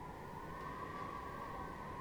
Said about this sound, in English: wow. That is the howl of the wind. You can tell it's almost winter.